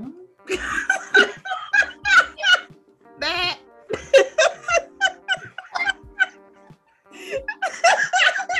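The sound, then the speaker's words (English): A person bleats like a sheep in a series of wavering, quavering cries, close and fairly loud, with laughter-like bursts mixed in and brief pauses between vocalizations. “You just turn into like a sheep when you don't have lips. Yes, you just make farm animal noises.”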